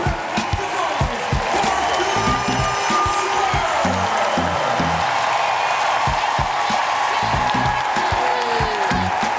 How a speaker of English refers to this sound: So with 2:10 to play, Bird gets subbed out one last time for a standing ovation.